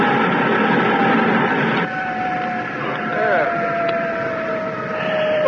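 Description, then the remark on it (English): A spacecraft's retro rockets fire to brake: a burst of thrust roars for under two seconds, then cuts back, leaving a steady whining drone with faint warbling chirps and a hiss that swells again at the end. “Now, before we get too far from the workshop, Druggett, I'll try the retros.”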